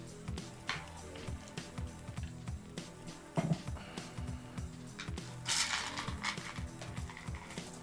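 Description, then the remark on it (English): A long, dense clatter of dice rolled across a tabletop for a difficulty-one insight roll in a tabletop game: rapid sharp clicks and rattles run for several seconds, with a louder knock in the middle and a brighter scattering burst near the end. “Someone's going to hear that and think I roll like 100 dice for this.”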